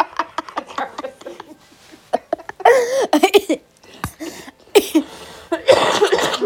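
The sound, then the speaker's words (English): Someone coughs several times during cold season, in rough, uneven bursts, harsh and fairly loud, with short pauses and some breathy, voiced sounds in between. “Excuse the cough. It's cold season.”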